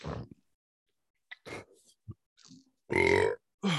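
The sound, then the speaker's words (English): Several guttural burps from a person doing the spicy one chip challenge erupt in irregular bursts, with short gaps between them and the loudest one near the end, each rough and throaty. “Why are you burping so much?”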